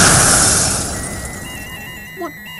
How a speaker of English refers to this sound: What happened? Some sort of explosion!